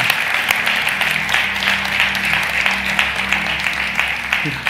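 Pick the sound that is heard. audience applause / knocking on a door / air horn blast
audience applause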